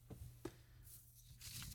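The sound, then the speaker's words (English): A piece of paper tearing, heard as a couple of faint, scratchy ripping bursts after a few soft taps, fairly quiet, with no one talking. “The nervous laughter, there goes a piece of paper, the nervous laughter that they do”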